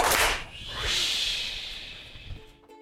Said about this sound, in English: Yeah, could you stand up and whoosh on back? I'll do the count, okay? So it'll be 1, 2, 3, and then clap, and then whoosh. Okay?